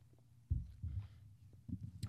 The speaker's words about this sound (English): Excuse me while I take a sip of my refreshing sparkling ice.